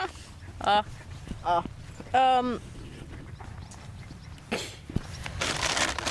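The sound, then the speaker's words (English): A bag of bird seed rustles and crinkles, a soft, hissy handling noise that builds toward the end, following a few short, tonal vocal bursts. “For those listening, that is the bag of bird seed.”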